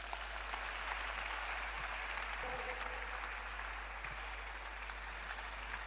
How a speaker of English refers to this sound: When we come, we hear them playing for us, and we sing, and we dance, and all that. These are all …. Come, clap for them, ….